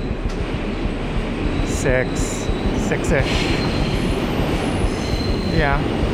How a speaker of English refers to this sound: So we are now going back into the tunnel. Train is slowing down a little bit.